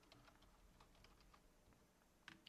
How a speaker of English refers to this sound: I was blocking the camera so they couldn't see you typing.